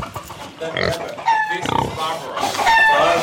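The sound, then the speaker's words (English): A pig kept as a pet at Kibbutz Mizra, a kibbutz that no longer raises or sells pigs, snorts and grunts in a quick series of short, nasal bursts, with some higher squeals mixed in and faint background voices. “Though Mizra no longer raises or sells pigs, it does keep a small, snorting reminder of its porcine past.”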